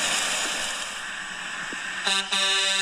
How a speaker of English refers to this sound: I had a video come up and I heard the honk honk. I went, oh, that's perfect.